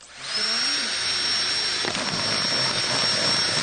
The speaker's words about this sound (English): So Dave's basically whacked his drill straight through the bottom of that bottle. So it's not actually on the base of the bottle. It's on the side of the bottle, but very, very close to the base.